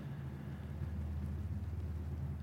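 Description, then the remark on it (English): A logging truck rumbles along a road half a mile away, a steady, deep, low drone that holds evenly throughout with no voices over it, in absolutely still air. “That's a logging truck. The road is a half mile away.”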